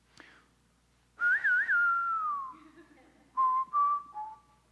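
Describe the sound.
A lone whistler carries a slow, lonesome Western showdown-style melody, warbling on a few notes before drawing out a long, sliding phrase, then returning with a shorter second phrase, clear.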